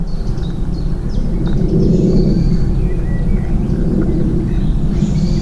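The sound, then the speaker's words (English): A wetland soundscape at NEP, a rewilding scheme in West Sussex, UK: a steady low rumble of planes overhead beneath dense crackly clicking from organisms in the water, with scattered high bird chirps and calls throughout. No one speaks. “The lower clicking sounds are from the organisms in the water, and the other sounds are, well, birds.”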